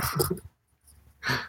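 A puppy inside a present box on Christmas morning gives two high, sharp yips, a short flurry followed by a brief pause and then one more bright bark, with no talking.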